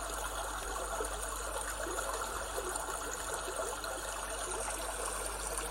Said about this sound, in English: Focus on the way the water is rushing over the stones, constant, and yet the sound is changing and varying slightly.